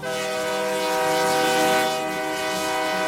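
A train horn blares in one long, steady, loud blast over the rumble of a passing train, with no voices.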